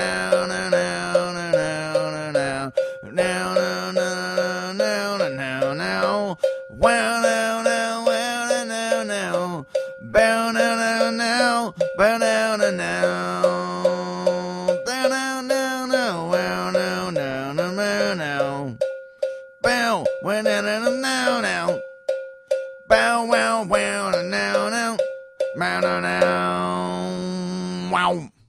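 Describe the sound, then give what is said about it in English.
A cowbell is played around 1 a.m. in a hotel room in New York City, struck over and over in a steady, quick rhythm, bright metallic clanks ringing out loudly on top of a backing track with bass and melody, with no one talking. “if anybody is next door to me in this hotel, they're going to lose their shiznit at some dummy playing cowbell”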